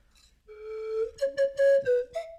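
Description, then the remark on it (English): A professional slide whistle plays fairly loud, starting on a steady low note and then stepping upward through a few short, sliding tones, with no voices. “That's why that's a professional slide whistle.”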